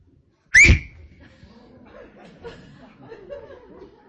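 A person lets out one sharp, loud whistle that rises briefly and cuts off. Faint murmuring voices and soft chuckling continue quietly in the background afterward.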